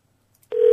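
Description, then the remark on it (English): A single loud, steady electronic beep from a phone keypad, lasting about a quarter second after near silence, like a number being dialled. “the number's queued in from last time. That's very handy.”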